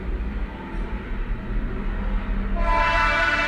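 A train rumbles by with a steady low roar, and partway through a bright, sustained horn-like tone joins the din. No voices are heard.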